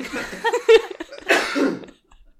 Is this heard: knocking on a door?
no